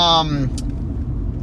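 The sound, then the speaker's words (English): A car engine hums steadily from inside the moving vehicle, a constant low rumble with a brief higher tonal whine at the start and a short click partway through. “Make sure I'm not hitting anybody, but that's my car.”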